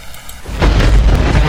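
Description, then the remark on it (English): A thunder sound effect: after a brief quiet moment, a loud, deep rumbling roar bursts in and keeps rolling steadily to the end, with no voices. “So we're going to put out the thunder on them.”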